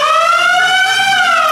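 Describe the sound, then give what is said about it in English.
A steady, loud siren tone from a theatre organ sound effect, of the kind such organs played to accompany silent films, its pitch swelling slightly and sustaining throughout with rich harmonics, heard alone with no talking. “tuned sleigh bells, celeste, glockenspiel, xylophone, even like an ocean drum sound, and it's got like a siren.”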